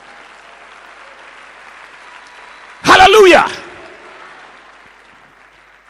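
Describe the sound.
An audience breaks into a short, loud burst of hand clapping lasting under a second, with a voice shouting over it, then it fades back to a low steady murmur.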